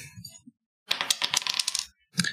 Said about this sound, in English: Roll that dice. Okay.